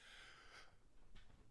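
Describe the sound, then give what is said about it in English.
A single sneeze: a breathy, hissing lead-in followed by a short, sharp burst of air, fairly quiet overall, with no talking. “Bless you.”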